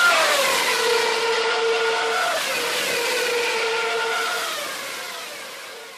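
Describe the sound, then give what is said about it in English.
A 2013 Formula One race car engine screams at high revs, its shrill pitch climbing and dropping through quick gear changes. It stays loud and continuous, easing off slightly toward the end, with no talking. “First, here's what a 2013 Formula One engine sounded like.”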